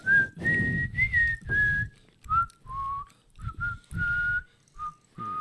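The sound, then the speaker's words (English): A person whistles a series of short bird-like calls, sliding between a few high pitches in uneven bursts, imitating birds chirping in trees, with breathy noise underneath and no other sounds. “You hear a few bird sounds in the trees.”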